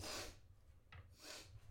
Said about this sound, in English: I have to take like a sniffle break. I'm going to move the microphone away for 1 second. I need to sniffle.